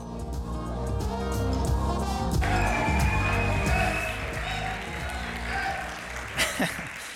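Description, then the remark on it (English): A church audience applauds to welcome a guest preacher: a dense, steady wash of many hands clapping that swells partway through and carries on for several seconds, with a murmur of voices mixed in. “And so I hope y'all can give a big round of applause, a ton of support for our brother”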